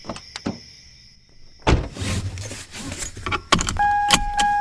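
Keys jingle briefly, then a car door opens with a loud thump as someone gets into the car, followed by rustling, another solid door clunk and a steady electronic chime inside the car, with no talking.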